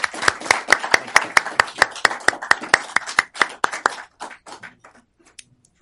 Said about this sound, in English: let's give one final round of applause